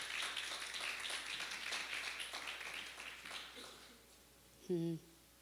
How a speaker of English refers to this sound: You can give them a warm hand clap as they go.